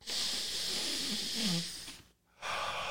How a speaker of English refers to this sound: Maybe I need to sniff this.